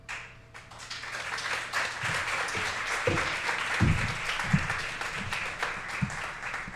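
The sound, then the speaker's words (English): A crowd applauds steadily, dense overlapping clapping that builds after the first moment and holds at a fairly even level throughout, with a few sharper individual claps standing out. “And I join in that applause, but if I actually applauded, I would have tripped on my way up the stairs.”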